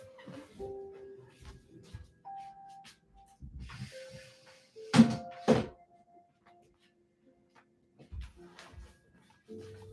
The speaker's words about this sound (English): I'm going to just shut the door. Give me a second.